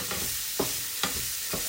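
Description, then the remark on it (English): Prawns being stirred in a non-stick frying pan over a steady sizzle, with four soft scraping pushes of a spatula at a slow, even rhythm, with no one talking. “And keep sort of pushing them around. Always use, if you've got a non-stick frying pan, always use a wooden spatula rather than a metal one, so you don't want to make a mess.”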